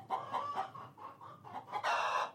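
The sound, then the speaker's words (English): Several chickens cluck in a steady, overlapping stream of short calls, moderately loud, building to a louder, busier burst of squawking near the end. “Chickens are always making different types of sounds, and there's a lot of information carried in these things.”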